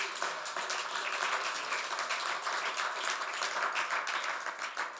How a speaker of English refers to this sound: Clap your hands.